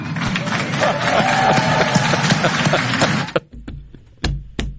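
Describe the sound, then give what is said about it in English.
A dense, crackling wash of crowd applause at an international youth climate summit fills the first three seconds, then cuts off abruptly, leaving a few scattered sharp claps and low thumps. “Get a rousing round of applause for blah, blah, blah, literally blah, blah, blah, blah, blah.”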